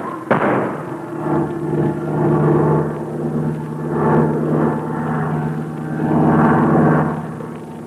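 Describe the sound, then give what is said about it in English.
A propeller airplane engine drones loudly, its pitch surging and straining in repeated swells as the plane nearly crashes before the controls are reached in time, with a sharp crack right at the start and no voices. “Thank goodness you reached the controls in time to keep us from crashing.”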